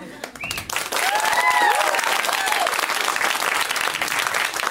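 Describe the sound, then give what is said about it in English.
A crowd breaks into loud, sustained applause for a person, clapping vigorously, the dense clapping swelling quickly after a brief start and holding steady, with a few whoops and cheers rising above it. “That person put in the most effort, so the least you could fucking do is clap your hands vigorously.”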